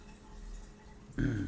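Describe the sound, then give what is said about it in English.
Near the end, liquid suddenly starts pouring into a cup, a short splashy gush after a quiet stretch of faint room noise, fairly soft. “So you're gonna re-pour it?”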